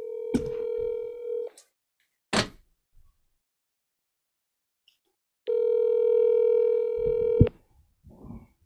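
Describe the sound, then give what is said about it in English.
An outgoing phone call rings out twice, each steady electronic ring lasting about two seconds with a long pause between, preceded by a brief click and followed by faint rustling. “Let's see if I can get him on the phone.”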